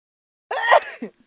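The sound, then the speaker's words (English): A woman sneezes once, sharply, after a brief silence, loud, swelling quickly and trailing off in under a second with a short breathy tail. “And that was a blessed sneeze.”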